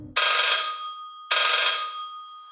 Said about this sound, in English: 5 minutes, 10 minutes, 30 years pass, and the phone rings.